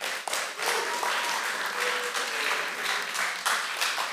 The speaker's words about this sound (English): Let's give one more round of applause to the speakers tonight. They did good, didn't they?